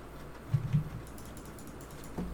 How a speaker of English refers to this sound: Typing. He's typing.